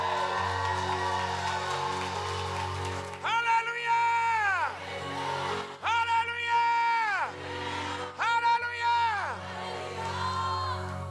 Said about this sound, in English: Give the Lord a big, big, big clap.